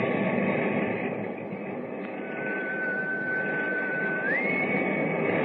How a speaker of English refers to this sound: I didn't want to answer you before I heard the whistle again.